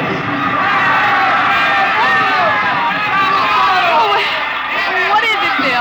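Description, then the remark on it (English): A loud, dense crowd yells and cheers continuously at a spring-night fiesta in a plaza in Mexico, cheering for a papier-mâché bull; many voices overlap in a lively roar with occasional whoops rising above the din. “Mr. and Mrs. William Travis stood on the edge of the yelling crowd, smiling.”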